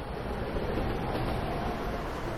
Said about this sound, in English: Siri's train arrived before too long, and she got on the closest car.